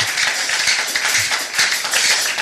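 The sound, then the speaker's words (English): A crowd claps for Jesus in a dense, steady wash of many overlapping hand claps, loud and continuous throughout, with no voices standing out. “Clap for Jesus again.”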